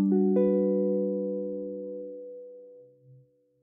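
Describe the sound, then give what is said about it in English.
A G-flat major seventh chord rings out on the middle four strings at the 10th position, restruck once right after the first attack, then sustains and slowly fades with no talking over it. “Diminished, we're going to lower this tone and raise this tone. And we get the G flat major 7.”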